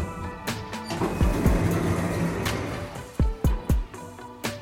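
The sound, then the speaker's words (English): Elevator doors slide open with a steady mechanical whir and rattle, broken by a low thump early on and then a quick series of three or four heavy clunks near the end. “Doors opening.”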